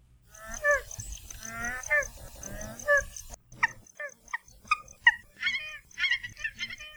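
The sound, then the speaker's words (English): Calls of Hawaiian geese (nene), Hawaii's state bird found only there: soft, nasal honks and murmuring grunts repeated in quick succession by several birds, with a steady background hiss in the first half. “Most of us know the nene, or Hawaiian goose, which is the state bird of Hawaii and found here and nowhere else.”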